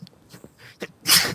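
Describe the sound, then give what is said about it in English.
A single sharp, loud sneeze bursts out right after a brief spoken phrase, ending the short moment abruptly. “Bless you.”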